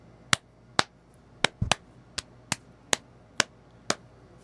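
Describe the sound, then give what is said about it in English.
About ten sharp, fleshy slaps of a person's hand on their own bare, obese belly, in a steady rhythm with a quick double slap near the start, and no talking. “That was me slapping my belly.”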